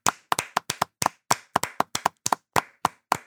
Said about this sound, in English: Let's clap. Let's clap. Please clap. Please clap.